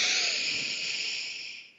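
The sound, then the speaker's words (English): A long, steady breath drawn in through the nose, a smooth airy hiss that holds for nearly two seconds before tapering off, with no talking. “So I want to encourage you each to take a moment and take a breath. Breathe in through your nose.”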